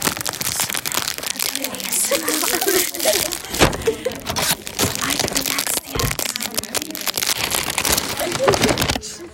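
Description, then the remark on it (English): A paper bag crinkles and rustles continuously for an ASMR recording, with dense crackling bursts and a few sharper crunches, while faint voices murmur underneath. “Put it on the paper bag.”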